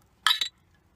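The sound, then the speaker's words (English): Glasses of Elysian Pumpkin Ale beer clink together in a toast, two bright, quick taps close together, fairly loud against a quiet background with no talking. “It's time for us to grab a drink. Nice. Cheers.”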